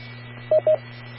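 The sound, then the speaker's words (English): Two quick DTMF keypad tones from a radio's keypad, sent to access an autopatch: a pair of short, steady electronic beeps in fast succession over a constant low hum, with no one talking. “Okay, KF7REM, accessing auto patch.”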